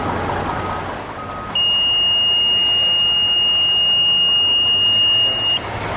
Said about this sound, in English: she shows what happens when something noticeably radioactive comes through the gate. She triggers the alarm with a small piece of cesium-137 in a Ziploc bag.